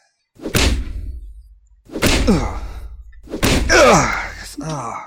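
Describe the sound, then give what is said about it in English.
Three heavy thumps as someone whacks a stuck wooden walk-in closet door to get it open, in a house being painted, spaced a second or so apart, each ringing out briefly, with strained vocal grunts mixed in around the blows. “Here, all right. Give it a couple good whacks.”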